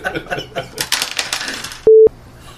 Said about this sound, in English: And then he drops his dice tower.